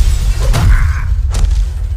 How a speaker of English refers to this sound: Across the street, a Joker sniper had looked out for victims to target when Drake crashed through the window behind him and knocked him.